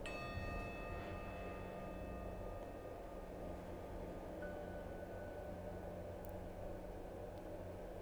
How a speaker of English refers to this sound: As you hear the chime, allow your energy to calm.